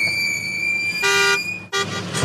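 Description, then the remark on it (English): A car with brakes in need of fixing pulls up with loud, high-pitched squealing brakes: a steady shrill whine, then two harsh, blaring bursts near the end. No one speaks. “By the way, get the brakes fixed on that car.”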